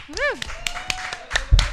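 A handful of scattered, sharp claps from a small audience, irregularly spaced rather than sustained applause, with a brief rising-and-falling vocal whoop near the start.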